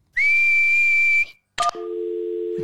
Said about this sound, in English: What's whistling anyway? You put your lips together and blow. Like this.